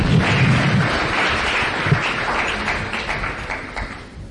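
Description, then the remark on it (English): An audience claps together, a dense, steady wash of many hands that fills the whole moment and stays fairly loud, fading slightly toward the end. No one speaks over it. “All right, clap for them.”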